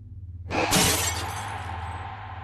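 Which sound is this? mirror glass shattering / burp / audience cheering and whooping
mirror glass shattering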